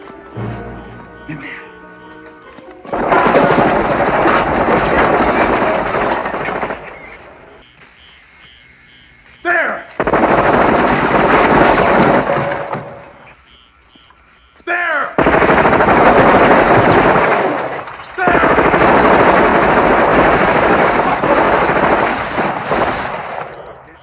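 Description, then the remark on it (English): Loud bursts of sustained automatic gunfire in a film scene, several long volleys separated by short lulls where voices and quieter sounds can be heard. “So they shoot.”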